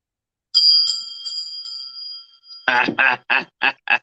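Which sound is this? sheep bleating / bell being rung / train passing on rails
bell being rung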